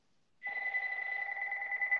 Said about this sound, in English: The phone is ringing. And by the way, we have a phone that's a landline that we never answer. So never call our landline.